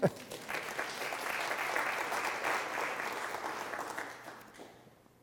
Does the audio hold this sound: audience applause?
yes